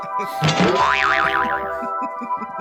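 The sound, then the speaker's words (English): A cartoon spring boing rings out with a quick bright twang, then a wobbling pitch that oscillates up and down several times before fading, alongside a steady low musical tone and faint background chatter. “I don't have any trash talk, but can I get that spring sound?”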